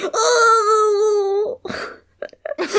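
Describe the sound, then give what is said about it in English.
A man's loud, drawn-out pained moan, like someone who has stubbed a toe, holds a steady, slightly wavering pitch for about a second and a half, then breaks into a few short, breathy bursts of sound. “It sounded like he stubbed his toe. That noise genuinely upset me.”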